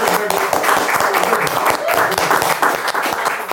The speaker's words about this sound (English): Let's clap it up for that, man. Clap it up for that.